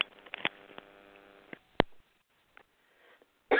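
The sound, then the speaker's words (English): Several harsh, abrupt coughs break out in a coughing fit at irregular intervals, with short breathy sounds and quiet gaps between them. “I'm having a bit of a coughing fit.”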